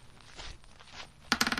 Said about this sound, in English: Yeah, roll the dice again.